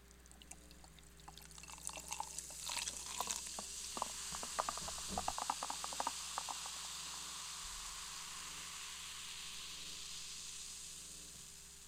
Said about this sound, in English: Maybe if I pour myself some diet cream soda.